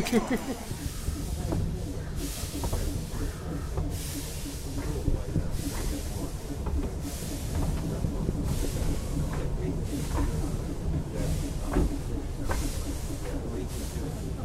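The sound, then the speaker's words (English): A train rolls slowly to a halt opposite waiting coaches, its steady low rumble broken by repeated loud hissing bursts of air every couple of seconds. “And we're slowly coming to a halt opposite our coaches, which will be taking us back to our hotels in a very few minutes from now.”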